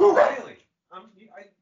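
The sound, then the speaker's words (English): A blind dog gives a short, rough bark, then after a brief pause lets out a couple of high, whining yelps, moderately loud, as someone arrives to take it out. “Someone was there to take the dog out.”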